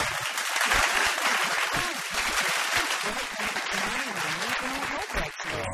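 Steady, dense audience applause for a guest on Get This on Triple M fills the whole stretch, a continuous wash of many hands clapping at an even loudness, with a few voices murmuring and calling out underneath.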